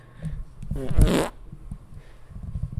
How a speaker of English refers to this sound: I got to fart again. I'm doing it into the mic.